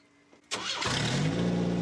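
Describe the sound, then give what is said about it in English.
A rally car engine cranks and catches with a sudden loud burst, then settles into a rough, rising rev that holds steady for the rest of the moment. “Give it a little bit of a turn, see if it'll start.”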